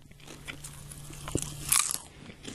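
Close, crisp crunching of popcorn being bitten and chewed, a few irregular crackly bites with one sharper crunch near the end, no talking.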